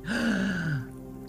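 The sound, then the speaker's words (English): A single drawn-out gasp from one person, voiced and breathy, sliding down in pitch for under a second before trailing off into quiet. Fairly loud, with no talking. “Sorry, that was a very long gasp.”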